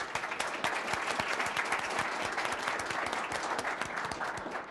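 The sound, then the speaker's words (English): A crowd claps steadily for Tim Keane, who oversees planning and development for the City of Atlanta: a dense wash of many overlapping hand claps held at an even loudness for several seconds with no voices standing out. “Let's give a round of applause to Tim Keane.”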